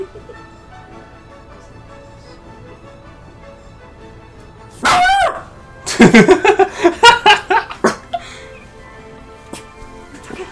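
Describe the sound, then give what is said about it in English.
A dog barks loudly: one sharp yelping bark, a brief pause, then a rapid run of about half a dozen barks before it goes quiet again. “Shut up. They're just gonna hear me abuse your dog.”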